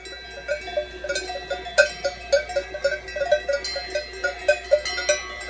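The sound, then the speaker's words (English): Many cowbells clang and jingle in an irregular, overlapping pattern as a herd of cows moves about high up in the Swiss Alps, the metallic ringing steady with no voices. “We're high up in the Swiss Alps, and that sound that you're hearing is a herd of cows wearing cowbells.”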